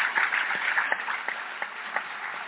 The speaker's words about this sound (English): Please join me in a warm round of applause for Ta-Nehisi Coates, for James Bennett.